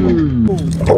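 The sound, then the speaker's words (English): A dog attacks a husky that has jumped a fence; the dogs snarl and growl at each other in a brief, loud scuffle, with deep rumbling growls sliding in pitch and ragged, wet snapping noises. “And then your other dog attacks the husky.”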